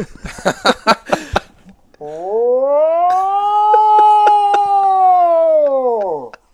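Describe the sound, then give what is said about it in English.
After a moment of talking, a man's voice imitates a Sasquatch call, meant to sound like a World War II air-raid siren: one loud, sustained howl lasting several seconds that swells upward and sinks back down like an air-raid siren. “It's supposed to sound like a World War II air raid siren.”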